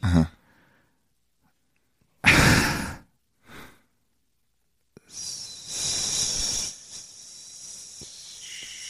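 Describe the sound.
Voices imitate peeing with breathy hissing: a loud burst, a shorter puff, then after a small click a steady, high, sustained hiss that streams on for several seconds.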